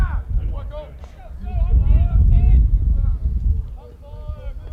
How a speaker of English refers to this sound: You can probably hear the wind cutting up through our crowd mic. Going strong toward right field.